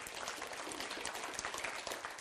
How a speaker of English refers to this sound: Can you give the Lord a big hand clap this morning?